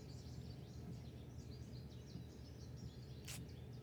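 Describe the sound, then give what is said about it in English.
Birds chirp in a steady stream of quick, high tweets, faint over a low background rumble, with a brief hissy burst near the end. “Hear those birds?”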